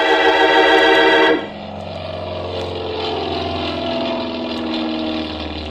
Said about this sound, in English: It was a nice afternoon, so I stood watching some of the planes take off and land.